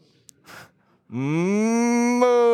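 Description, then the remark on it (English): A person imitates a cow for Shabbat Parah, the Sabbath of the cow, with one loud, drawn-out "moo," a low voiced tone that rises slightly in pitch and holds steady, after a quick intake of breath. “Moo!”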